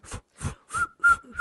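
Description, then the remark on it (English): A person imitates the whistling of a leader emu: five short, evenly spaced breathy bursts, the later ones carrying a thin whistled tone, moderately loud with no talking. “They just, like, you know that leader emus out the front whistling and stuff?”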